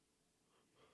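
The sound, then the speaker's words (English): A breathy yawn: a drawn-out inhale that swells louder toward the end, with a faint voiced strain as it peaks. No one speaks. “I'm not yawning on you.”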